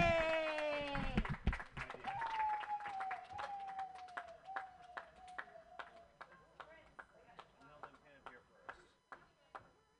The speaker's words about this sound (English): And clap it up, and thanks again.